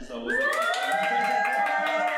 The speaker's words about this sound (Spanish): Y como para que nuestra audiencia se dé cuenta que es realmente un episodio en vivo y no como una cosa pregrabada, quiero que nuestro público por favor haga presencia, un ruido, un aplauso.